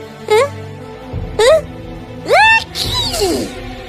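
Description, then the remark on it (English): A voice imitates a big sneeze: three rising, drawn-out 'ah' gasps that climb in pitch, then a loud, breathy burst that falls away at the end. “The prince's face was twisted, and then suddenly he let out a terrible sneeze.”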